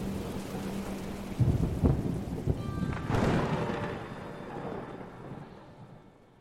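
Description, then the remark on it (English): A thunderstorm with lightning strikes all around and steady rain hissing throughout, broken by loud, rumbling thunder claps around the middle that roll and slowly fade as the downpour continues. “The electricity is strong with this storm. There are lightning strikes all around.”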